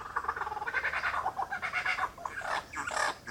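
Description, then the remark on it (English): A lyrebird runs through rapid mimicked bird calls, a dense, busy stream of chirps, squawks and clucking notes, continuous for a few seconds with no talking, in woodlands north of Canberra in the Australian Capital Territory near the New South Wales border, nearly nighttime under a rising full moon. “And of lyrebirds pretending to be other birds.”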